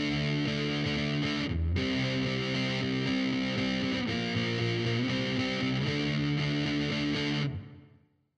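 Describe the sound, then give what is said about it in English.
A heavily distorted electric guitar, with the drive placed before the reverb and the reverb set to sound like a garage or metal room, plays loud, sustained chords with a brief break early on, then rings out into a short reverberant tail. There is no talking. “I'm going to play a demo that has your drive before your reverb.”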